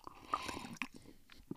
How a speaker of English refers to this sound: Let me take a sip of tea here.